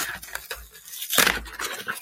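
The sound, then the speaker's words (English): Scissors snipping and scraping through a package of pre-moistened tuna flakes in a few short, crisp bursts, with rustling plastic between cuts and a louder, sharper cut midway. No one speaks. “I have to just cut this and I have to do it over again.”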